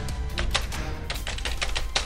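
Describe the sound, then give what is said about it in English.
Quick, irregular clicking of keys being typed on a computer keyboard, steady over a low background hum, with no one speaking. “I didn't say anything because keyboard doesn't work.”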